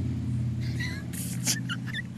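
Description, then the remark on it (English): A motorcycle engine drones past in a steady, low, buzzing rumble that swells slightly midway, while brief high squeaky chirps flicker above it. “From my view, you got this guy on a motorcycle go by.”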